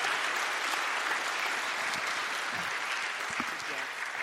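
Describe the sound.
A crowd applauds steadily, dense clapping filling the whole clip at an even level, with a few murmured voices faintly underneath.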